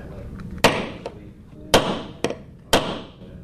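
Hammering nails while a high school student builds a mousetrap car at Ocean Lakes High School in Virginia Beach: four sharp, ringing strikes at an uneven pace, with a lighter tap between the first two, over a low background murmur.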